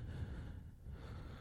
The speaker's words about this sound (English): Why are you just breathing into the microphone? I'm like, just like hearing you go.